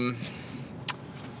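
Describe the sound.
A steady, low rumble from inside a car moving slowly in heavy traffic, with a brief voice fragment at the start and a single sharp click near the end.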